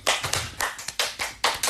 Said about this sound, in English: I want to give them a hand applause. Come on.